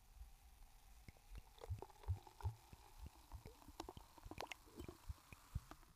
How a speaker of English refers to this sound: Yeah, that's sparkling grape juice. Oh, yeah, hold on. Let me let you listen to the pour.